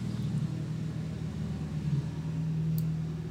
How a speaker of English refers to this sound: Hang on, we gotta wait for whatever's going by here. Oh, look, a truck.